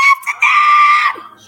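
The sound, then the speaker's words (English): A woman screams loudly: two short, sharp yelps, then one long, high-pitched sustained shriek that cuts off abruptly, followed by near silence. “Quirky looking at me like, why is she screaming?”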